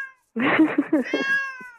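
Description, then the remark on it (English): A cat meows, a drawn-out, wavering cry that rises and falls over a second or so, with a brief higher whine trailing at the start and end. “I hear that meowing.”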